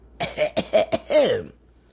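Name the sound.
cough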